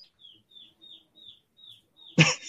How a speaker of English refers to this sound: Oh man, I can hear it tweeting. It's adorable.